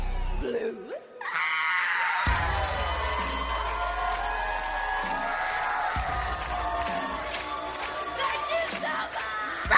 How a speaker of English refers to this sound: When you hear the audience cheering at the end of it.